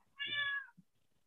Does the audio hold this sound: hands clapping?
no